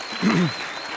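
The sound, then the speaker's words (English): An audience applauds with a steady wash of many hands clapping, and a brief vocal cheer rises over the clapping near the start. “Yeah, give a hand of applause for that.”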